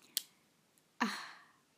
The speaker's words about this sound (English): Sorry, I'm clicking my pen. I like fidgeting.